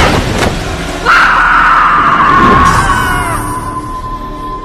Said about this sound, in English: They could have used that scream.